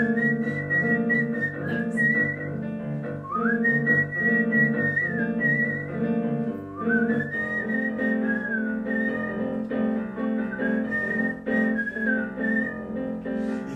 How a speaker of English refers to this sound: I'm going to try and whistle. You can whistle.